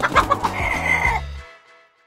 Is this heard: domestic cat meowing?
no